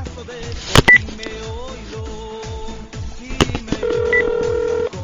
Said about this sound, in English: Imagine slapping your mother when suddenly the phone began to ring. His phone began to ring,